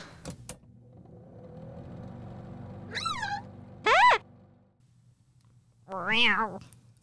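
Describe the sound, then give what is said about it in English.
Three drawn-out, wavering yowls like a cat in heat, apparently a human voice imitating the cat, rising and falling over a steady low engine-like hum, with a short pause before the loud final cry. “You know, like a cat. Like a cat in heat or something.”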